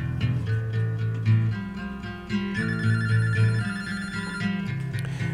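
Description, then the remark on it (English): A telephone rings for a caller to a live radio show, with a steady, melodic electronic tone, its pitched notes repeating in a looping pattern for several seconds. No one speaks over it. “This person may be calling to tell you what you'll be hearing.”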